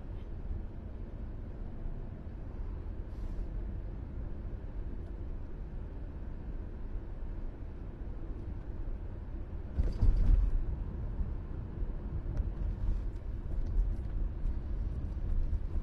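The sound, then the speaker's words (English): ATVs rumble by on Broad Street in Edgewood, Rhode Island, a steady low engine drone with traffic-like noise throughout and one brief louder surge partway through, with no talking. “The ATV's invade Broad street in Edgewood RI”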